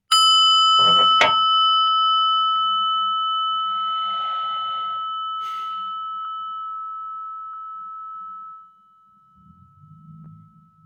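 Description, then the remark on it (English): A small prayer bell is struck once before a meditation, its clear, bright ringing tone sustaining and slowly fading for several seconds before cutting to near silence, with a faint voice beginning at the end. “So for those of you joining us for the first time, what I do is I ring a little prayer bell here. You just listen to it and let it calm you down, and then we'll go into a meditation.”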